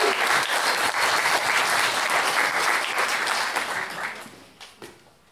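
An audience bursts into loud, sustained applause, a dense wash of many hands clapping that holds steady for about four seconds before thinning out into a few scattered final claps.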